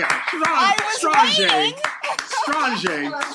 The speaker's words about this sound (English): Wow. That, I got to clap for that.